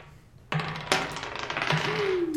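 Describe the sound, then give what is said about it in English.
Dice clatter across a hard tabletop in a few sharp knocks and rattles spread over a couple of seconds, landing on an 18, with faint background murmur underneath. “That's an 18 on dice, so I definitely throw it where it wants.”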